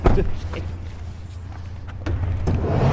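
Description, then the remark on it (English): A taxi cab idles with a steady low engine rumble while a few sharp clicks and thumps sound as a passenger opens the door and gets out of the cab. “I'm just getting out of the cab.”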